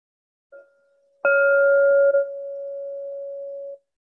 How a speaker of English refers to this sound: Hear three bells, one in just a moment, one in 30 minutes, and the final bell 60 minutes from now.